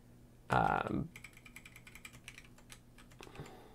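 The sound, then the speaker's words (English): Quick, steady clacking of keys on a new computer keyboard runs for a few seconds, moderately quiet, after a brief louder burst that sounds like a voice at the start. “I think if we just look at, I have a new keyboard, which I should talk about as well.”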